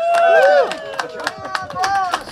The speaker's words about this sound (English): Yeah, we could not have done this without Laurel Canyon. A big round of applause for Laurel Canyon, if you guys are pleased.